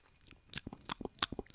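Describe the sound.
A rapid series of wet lip smacks, around ten sharp clicky pops in quick irregular rhythm, fairly quiet with no talking.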